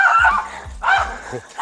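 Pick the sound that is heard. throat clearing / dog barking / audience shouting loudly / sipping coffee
dog barking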